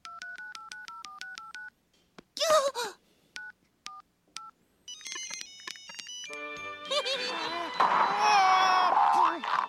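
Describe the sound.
Rapid electronic keypad beeps and phone tones pile up from many children's cell phones in a classroom at once, chirping and ringing over each other, then give way to a noisy clamor of overlapping children's voices.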